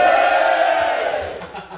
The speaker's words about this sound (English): We have quite a crowd here. Give yourselves a cheer. Go on!